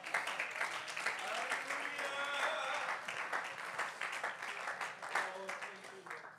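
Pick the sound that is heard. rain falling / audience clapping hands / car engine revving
audience clapping hands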